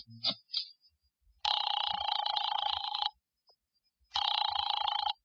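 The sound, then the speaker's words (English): A telephone rings twice as a call is dialed from an office phone to Nero Wolfe, each burst a steady electronic trill lasting over a second with a pause between, preceded by a couple of faint clicks, clear with no voices. “I drove down to the document research laboratory on Vanderbilt and got such a shock that I grabbed the office phone and dialed Wolfe at once.”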